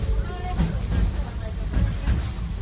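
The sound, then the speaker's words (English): A train rolls steadily along the tracks, a continuous low rumble and hiss punctuated by a few rhythmic clacks of wheels over rail joints, loud throughout. “If you've been riding trains as long as this old-timer, you may remember the days when the circus would come to town on the local railway.”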